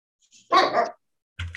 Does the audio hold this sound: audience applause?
no